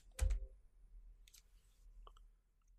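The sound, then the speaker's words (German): A single sharp click, made to start video playback, like a mouse button being pressed, followed by a few much fainter ticks and soft rustling in otherwise quiet surroundings. “Quasi vier wäre der Klick sozusagen.”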